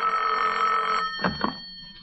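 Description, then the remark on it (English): A telephone bell rings for a long-distance call in one steady, bright burst lasting about a second, then cuts off, leaving a couple of short clicks and a faint hum. “Long distance calling.”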